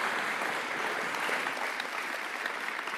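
Steady applause from a church audience, a dense wash of many hands clapping at an even level for the full few seconds, with no talking over it.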